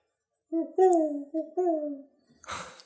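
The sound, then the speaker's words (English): A voice mimics an owl's hooting with four tonal hoots in two pairs, each a steady mid-pitched call dipping slightly at the end, followed by a short breathy rustle. “The sound of an owl strikes fear in Ulfsbane's heart.”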